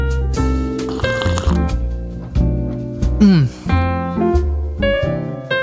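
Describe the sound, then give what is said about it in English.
A quick, wet first slurp of hot Costa Rica Blend coffee from Pilgrim Roasters on Market Street, Philadelphia, with a brief rising-and-falling squeak of liquid, over a steady bed of tonal background music. “Today's coffee is called the Costa Rica Blend from Pilgrim Roasters in Philadelphia. It is on Market Street, and let's take our initial sip here.”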